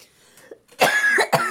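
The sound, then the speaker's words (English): A loud cough bursts out in two harsh, raspy pushes, with a brief pause between them, after a moment of near silence. “I was holding on to that cough.”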